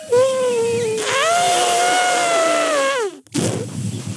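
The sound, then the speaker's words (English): A person trumpets like an elephant with their voice, a loud, brassy, sustained blare lasting about three seconds that rises in pitch, then drops off sharply, followed by a burst of breathy noise. “I can do an elephant.”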